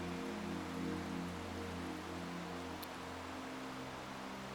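Rain falls steadily in a continuous, even hiss for a few seconds, with a faint low hum running underneath and no voices.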